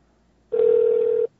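A single steady ringback tone from an outgoing phone call to a subscriber, lasting under a second, clear with nothing else around it and no voices.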